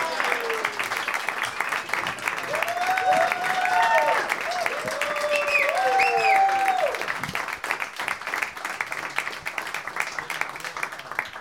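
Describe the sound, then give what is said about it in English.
A studio audience breaks into loud, sustained applause welcoming guests Ian Karmel, Josh Brown and Jay Chandrasekhar, with whoops and cheers rising over the clapping midway before the dense clapping carries on steadily to the end. “Please give a big warm welcome to Ian Karmel, Josh Brown, and Jay Chandrasekhar.”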